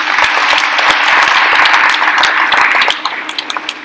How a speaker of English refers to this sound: It's fabulous to feel the claps. I just want you to know.